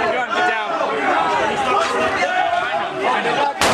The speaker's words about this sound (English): He's got a gun. Get down. Oh, that sounds like a gunshot.